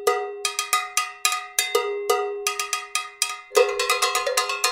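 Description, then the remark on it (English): Three people jam on several cowbells in a deep polyrhythm, striking them in interlocking, overlapping rhythms; bright metallic clanks ring and layer into a busy clatter that grows denser toward the end. No voices. “There's this video I found online of these three guys jamming on cowbells, and it's unbelievably fascinating.”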